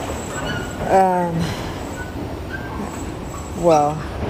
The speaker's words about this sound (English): A bunch of people just got off the train.